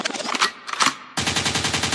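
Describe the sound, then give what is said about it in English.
Loud gunshot sound effects: a couple of sharp blasts followed by a rapid, evenly spaced burst of automatic fire that runs to the end, with no one talking. “Make out means rewind, a gunshot means forward.”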